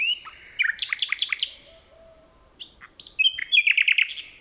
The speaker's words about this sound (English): Phil Riddett recorded these two nightingales in a forest near Kent, England.